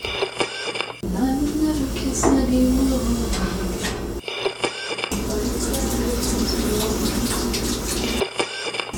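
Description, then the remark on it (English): Water runs from a tap in two long, steady gushing stretches separated by a short pause, fairly loud, with a faint rising tone like a vessel filling, as more water is put in for tea. “That means I have time to go put more water in my tea.”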